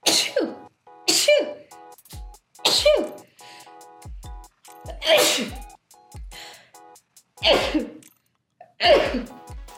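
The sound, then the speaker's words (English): A person sneezes repeatedly, six sharp, explosive sneezes over about ten seconds, each a loud burst with a short breathy tail, spaced irregularly with brief pauses between them. “If y'all ever get annoyed of your own sneezes, like the same, because that's what just happened.”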